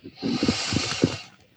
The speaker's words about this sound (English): Tapping the top of the head and breathing. Big deep breath.